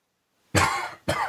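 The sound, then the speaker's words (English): Two harsh coughs in quick succession, the first longer and raspier, the second shorter, with silence before them and no talking. “Sorry about my cough.”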